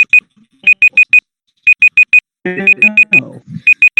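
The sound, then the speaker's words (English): A digital debate timer alarm beeps in rapid groups of four high-pitched tones, repeating several times, loud, with a brief burst of voices and noise partway through. “I'll turn the timer.”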